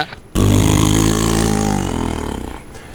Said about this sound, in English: But, you know, hey there, thanks for the loud engine on whatever that is, you freak.